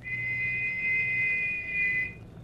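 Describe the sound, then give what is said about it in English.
A single long, high-pitched whistle holds a steady, slightly wavering tone for about two seconds before cutting off, over a low background hum with no voices. “Well, he said, on the river, and to listen for another whistle like this one.”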